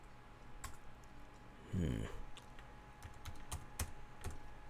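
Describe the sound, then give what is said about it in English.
Clicking of keys on a computer keyboard, tapped in quick, uneven bursts with a short louder thump partway through, over a low steady background hum. “All this typing is too much for me.”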